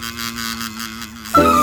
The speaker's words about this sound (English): What's that sound? It's a bee. There it goes, buzzing from flower to flower. Up, down, and all around.